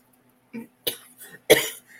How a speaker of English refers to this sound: It's making me cough because I choked on my own spit. And I did.